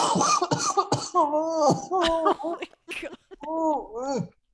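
Several harsh coughs from a man burst out in a rough series, interspersed with strained, groaning vocal sounds, loud and rasping over about four seconds.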